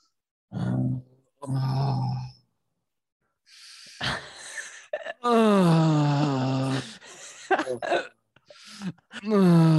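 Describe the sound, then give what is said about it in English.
A voice imitates a man's heavy, moaning breathing in a sauna: a couple of short huffs, then long, drawn-out groaning exhales with wavering pitch, loud, followed by choppy breathy bursts. “You should have heard the way Robbie was breathing in the sauna. It sounded like he was fucking behind me.”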